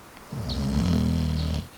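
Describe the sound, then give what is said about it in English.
A single deep, rumbling snore from a sleeping lion swells up and fades over about a second and a half, a low, throaty rasp with no talking. “He is very fast asleep. I can even hear him snoring.”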